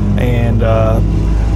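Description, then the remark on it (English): A lawnmower engine drones past, a loud, steady low rumble with buzzing, tonal whines that swell in two short bursts before settling back into the constant motor hum. “As the lawnmower goes by.”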